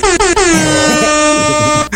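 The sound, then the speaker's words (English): An air horn sound effect blares in three quick short blasts followed by one long sustained blast, loud, with no talking. “Give a little air horn for right there.”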